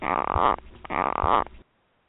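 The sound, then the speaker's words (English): Two loud, harsh barking calls from a Tokay gecko, each a raspy, throaty croak lasting about half a second, spaced closely together and followed by silence. “And I play that at the end of every episode, as you guys know, but that is the bark of a Tokay gecko.”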